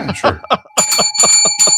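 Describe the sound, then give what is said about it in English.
A bright bicycle-style bell, called a science bell, rings out from about the middle onward, its clear sustained tones layered over quick overlapping chatter that continues throughout. “Just hit the science bell for me, please.”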